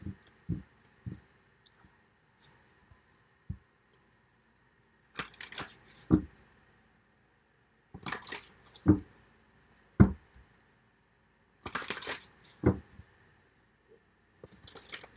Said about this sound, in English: Sorry, I need to shuffle the deck more.